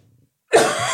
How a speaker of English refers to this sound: I can't stop coughing. It's not emotion. I've genuinely got a tickle. It's really hard to hear such an awful moving story with you hacking.